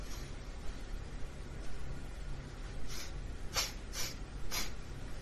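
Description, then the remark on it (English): A person imitates a small fairy dragon's sniffing with about four short, quick nasal sniffs in a row, fairly quiet, after a stretch of low background hiss. “He sniffs his little fairy dragon nose.”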